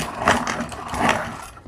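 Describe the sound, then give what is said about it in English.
A pencil grinds in a sharpener with a steady, raspy scraping that swells twice, around a quarter second and again near one second, with no voices. “So let's sharpen this baby and see how it goes.”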